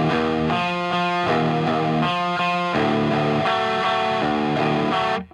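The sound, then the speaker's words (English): A heavily distorted electric guitar, played through a distortion pedal in a heavy distortion setting, plays sustained chords that shift every second or so, thick and buzzy with a saturated drive tone, ringing steadily and then cutting off abruptly at the end. “So I don't generally use it in this real sort of like distortion setting.”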